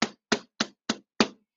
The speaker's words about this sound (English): And he told us in Revelation 3:20, look, I stand at the door and knock.